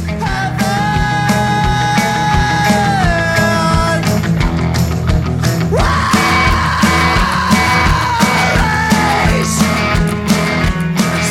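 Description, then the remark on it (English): A track from an album: loud, dense rock music with distorted guitars and pounding drums, over which a vocalist delivers long, strained screams that rise and sustain before breaking off. “Why don't we play another cut from the record?”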